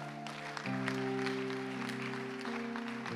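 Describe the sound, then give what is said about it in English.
A crowd claps steadily, a dense crackle of many hands, while a sustained organ-like chord with a step change in pitch plays underneath throughout. “I don't like your hand clap.”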